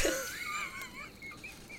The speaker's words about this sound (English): Why did we pick a soundscape with an owl in it? It's so loud!